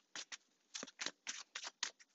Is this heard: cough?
no